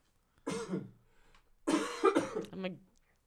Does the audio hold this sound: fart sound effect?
no